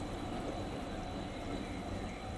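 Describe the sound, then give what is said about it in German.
A tram turns around a rusty curve back into the forest with a steady, low rumbling drone and faint metallic hiss, continuous, with no voices. “Die Tram biegt um die rostige Kurve zurück in den Wald.”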